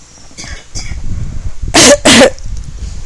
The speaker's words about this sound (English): Yeah, she blames me for her cough. My environment makes her cough.